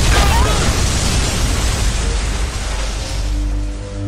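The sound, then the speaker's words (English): An explosion in the Big Finish Doctor Who audio drama The Blazing Hour roars continuously for several seconds, a loud, dense wall of deep rumble and crackling noise that eases only slightly toward the end, with no voices. “The explosion is coming now, and nothing can stop it!”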